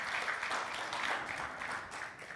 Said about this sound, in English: Give him a clap. Give him a clap.